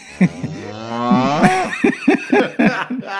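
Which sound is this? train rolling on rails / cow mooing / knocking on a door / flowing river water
cow mooing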